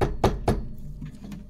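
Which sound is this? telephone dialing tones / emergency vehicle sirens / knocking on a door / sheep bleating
knocking on a door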